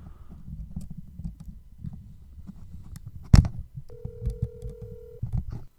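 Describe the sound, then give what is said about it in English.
A telephone call being placed: a sharp click, then a single steady ring tone lasting over a second, heard over a low, muffled background rumble. “I knew you were going to call.”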